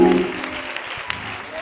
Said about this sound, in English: Clap your hands and give God some praise. Clap your hands and shout hallelujah three more times.